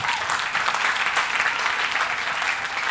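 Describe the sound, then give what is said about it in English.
A church audience claps together for the Lord in a dense, steady burst of applause that fills the whole stretch, loud and sustained without pause, with no one speaking over it. “Okay, give the Lord a clap.”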